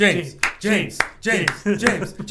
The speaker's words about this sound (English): Applause to you, sir.